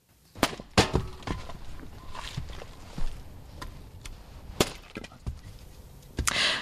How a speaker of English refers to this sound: is chopping wood for his business, the Finnish sauna.